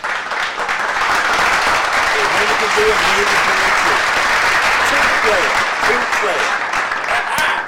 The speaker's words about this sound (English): Oh, and he got two kids in. You can clap for him.